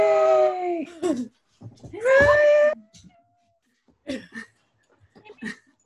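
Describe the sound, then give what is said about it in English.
A female dog lets out two drawn-out, wavering howls, separated by a brief pause, followed by a few short, softer yips and snuffling sounds. “Have a dog. Let me go find her.”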